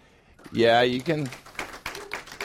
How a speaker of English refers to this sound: Yeah, the reason you're clapping is because you guys weren't there. That's why you're clapping.